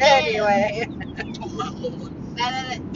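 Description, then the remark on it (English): A steady low rumble of road noise fills a car's interior as it drives on Interstate 75, with a high-pitched voice sounding briefly at the start and again near the end. “Anyway, we are coming to you from the car on Interstate 75.”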